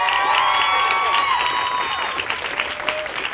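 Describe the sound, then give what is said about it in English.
A crowd at an Apple Store event claps and cheers loudly and continuously as Grace Helbig, Mamrie Hart and Hannah Hart are brought out to talk about their movie, with high whoops and whistles rising above the dense applause before it gradually thins out. “Big round of applause.”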